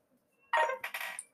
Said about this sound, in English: Sorry, phone's going mad.